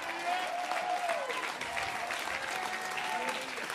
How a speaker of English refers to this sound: Come on, if you've made up your mind that way, go ahead and give the Lord a great big hand clap in Salem, Oregon today.